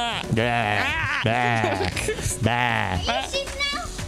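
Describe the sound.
A person imitates a goat, letting out about three loud, quavering bleats in a row, each one wavering in pitch with a shaky vibrato.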